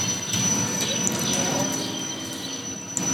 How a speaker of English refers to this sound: But look at that fucking train is loud. Right. Jeez Louise.